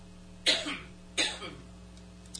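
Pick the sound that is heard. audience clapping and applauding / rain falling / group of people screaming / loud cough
loud cough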